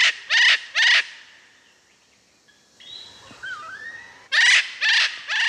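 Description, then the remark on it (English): Loud, harsh Eclectus parrot screeches come in a quick burst of three, then a lull filled with faint bird whistles, then three more raucous calls. “None other than the absolutely stunningly beautiful Eclectus parrot.”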